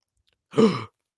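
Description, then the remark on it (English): A single voice makes a short, breathy gasp, imitating the crowd's collective intake of shock at the United Center during a Blackhawks game; it rises quickly, lasts under half a second, and sits alone in silence. “I don't know if I said this on the last podcast, but there was like an audible gasp in the United Center at the Blackhawks game Sunday when Mooney dropped that ball.”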